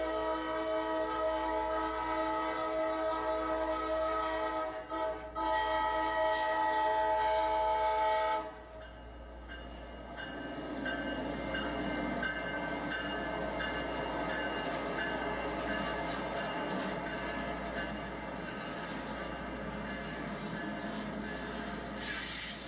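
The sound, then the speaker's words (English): A train horn blares with strong harmonic tones for about eight seconds, then gives way to the steady rumble and rattle of freight train 0755, a yard-to-yard transfer job bringing cars from Duval Yard to the FEC's Bowden Yard, rolling past as it heads north. “When QO32 passes, 0755 gets the green light to head on north. This is a yard-to-yard transfer job.”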